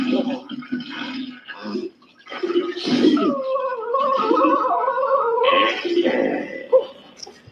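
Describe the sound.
A voice imitates a messy bout of diarrhea of someone on a toilet in a girls' bathroom, with wet gargling sputters, a rising strained wail, and bubbly spluttering bursts, loud and continuous for several seconds.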